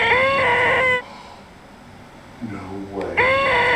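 A device with an antenna, set on the ground, lets out a loud, shrill squeal with layered harmonics, cuts off, then after a quieter stretch of lower warbling tones the piercing squeal starts up again. The device squeals when a hand gets near its antenna.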